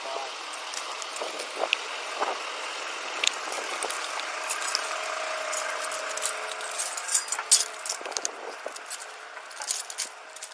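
Three sets of keys jangle and clink, a busy run of bright metallic rattles that keeps going for about ten seconds with uneven little bursts.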